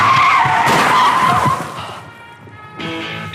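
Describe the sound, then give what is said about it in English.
Car tires screech loudly in a sustained skid for over a second as the car pulls up and runs into a narrow alley, then the noise drops away to a low rumble before a brief burst of engine or road noise returns. “They pull up, and the girl is left in the car, which runs into a snicket.”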